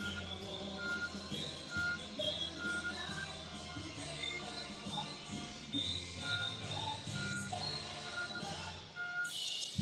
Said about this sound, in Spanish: Ahí están todos los autos saliendo ya. ¿Cuántos autos tú crees que hay?